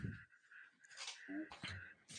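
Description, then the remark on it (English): A dog pants softly and quickly, with a short, faint whimper partway through, quiet with no talking. “Hope her doggy's okay. Sick dogs. Sad dogs.”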